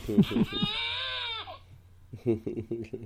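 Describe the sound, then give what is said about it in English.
A crying sound effect from a meme soundboard plays: one drawn-out, wavering, bleat-like wail lasting about a second, with a fair amount of loudness. Someone talks briefly before it and resumes speaking after it. “I'm trying to find like some sort of crying sound on my meme board.”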